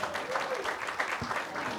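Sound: audience round of applause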